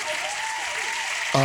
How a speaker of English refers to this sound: We might need to give you a round of applause for that one, though. That was epic.